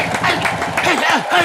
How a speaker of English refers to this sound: Ladies and gentlemen, Rocky welcome Balboa. To the 50th episode of the Rocky Balboa cheesesteak fun hour. Clap it up, gentlemen.